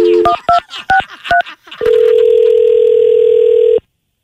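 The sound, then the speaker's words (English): A quick series of about five telephone keypad beeps, then a loud, steady dial tone after the phone is hung up, droning for about two seconds before cutting off abruptly. No one speaks. “Yeah, hey, I think your phone got disconnected.”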